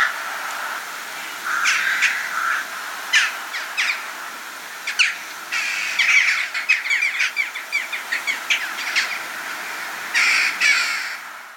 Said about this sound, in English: Jackdaws and rooks flying together in a large flock, I assume travelling to and from their roosting sites. This has just started up again this year. Whenever I hear the calls of this flock, I usually rush out to watch it pass overhead.